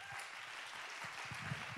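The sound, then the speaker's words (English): A church audience claps their hands together in a steady, dense wash of overlapping claps that holds an even loudness throughout, with no voices standing out. “You might as well just go ahead and clap your hands and get on pray, because we're gonna have some time here today.”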